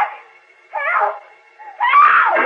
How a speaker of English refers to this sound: Suddenly he hears Lois's faint, far-off scream for help.